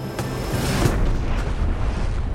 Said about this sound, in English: A UFO has crashed in my backyard, has taken out my azaleas, and destroyed my bird bath.